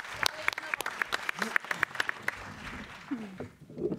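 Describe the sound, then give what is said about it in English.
At a fight press conference, a small group gives light applause to a woman being introduced, individual sharp claps picking out through the first half and thinning out after about two seconds, with murmured voices underneath and continuing afterward. “Let's give her a big clap.”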